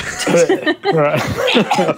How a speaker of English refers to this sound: As a druid, I'm gonna cough that out.